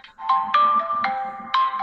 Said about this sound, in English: Oh, it's my son. that's a very jolly ringtone you have there. It's my son.